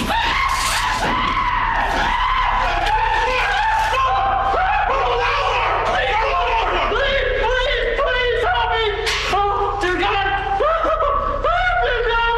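A man on the ground, tasered in the neck, screams and wails loudly and almost continuously, his strained, high-pitched cries rising and breaking over about twelve seconds.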